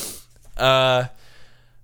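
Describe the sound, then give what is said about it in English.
A person yawns once at about 11 a.m., a short breathy intake followed by a loud, steady voiced groan lasting about half a second, then quiet. “Oh, I'm just yawning with every word that I say.”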